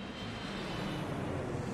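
A steady, broad roar of an airplane engine passing overhead, with a deep low rumble and hissing upper noise holding at an even loudness throughout, no voices present.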